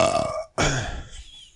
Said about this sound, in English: Don't fart into the mic.